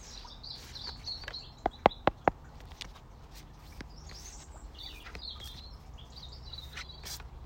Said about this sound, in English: Can you hear the bird song where I am? It's so special.